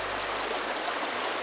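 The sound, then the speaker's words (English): A creek in the Pocono Mountains flows steadily, a continuous bright rush and babble of water with no pauses and no voices, while a person stands in it with water above the ankles. “You can still see I'm standing in water up above my ankles.”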